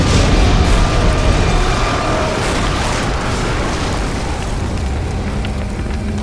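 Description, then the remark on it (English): A fiery explosion after the Batwing aircraft belly flops onto a street and crashes onto the steps of Gotham Cathedral: a loud, steady roar of burning with deep rumbling and dense crackling noise that holds for several seconds without easing. No one speaks. “Vicky stood in horror as she saw the Batwing belly flop onto the street before it crashed onto the steps of Gotham Cathedral and erupted into a ball of flames.”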